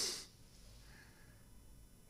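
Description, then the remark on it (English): A brief, breathy rush of many people sniffing at once, a short hiss at the very start that fades quickly into quiet room tone with no talking. “Do this for me. Just sniff.”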